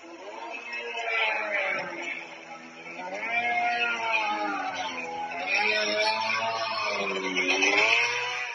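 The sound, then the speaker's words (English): A two-stroke drone engine buzzes steadily for the whole clip, its rasping, harmonic drone wavering up and down in pitch as the revs shift, with no voices present. “to be a cruder version of the Shahed 136 kamikaze drone, powered by a two-stroke engine you can buy from the Chinese website Alibaba.”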